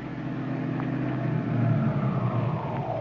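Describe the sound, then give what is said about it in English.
Dick Tracy's car engine hums steadily, its pitch gradually dropping as the car slows and rolls to a stop outside an apartment house, with no voices. “The great detective is just stopping outside the apartment house where Tess Trueheart lives.”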